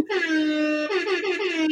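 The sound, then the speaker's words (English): A loud hip hop air horn blares one long sustained blast, then a quick burst of shorter stuttering honks. The brassy horn stands alone with no talking. “Hip hop air horns for this lady.”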